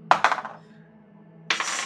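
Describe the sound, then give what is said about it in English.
A small die clatters onto a hard tabletop with two quick bright impacts and a short ringing rattle, then a second scraping clatter about a second later, rolled for an arm wrestling match in a game and landing on 19. Fairly loud, with no talking. “Man, he had a 19 on the die.”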